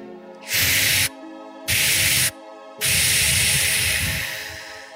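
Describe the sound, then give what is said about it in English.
Three forceful, breathy exhales with a hissing rush, cleansing breaths from the lungs in a breathing exercise with arms lifting and hands brought down: two short bursts, then a longer one that slowly fades out, over a soft steady humming tone. “Inhale, exhale, bring your hands down. Cleansing from the lungs, breathing in.”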